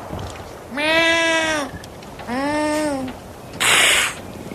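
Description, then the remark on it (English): A person's voice mimics a cat: two drawn-out, rising-and-falling meows, each about a second long, followed by a short breathy hiss, all fairly loud. “I can talk a little cat.”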